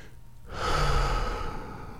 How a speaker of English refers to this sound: Breathing in the moment, the sunrise to my right, its rays shining brightly through these trees.